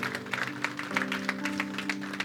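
An audience applauds with steady, dense clapping throughout, a busy patter of many hands at moderate loudness, with a low sustained musical tone humming underneath.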